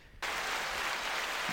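A canned burst of crowd applause played from a soundboard cuts in abruptly after a brief pause and continues loud and steady, a dense wash of clapping with no voices.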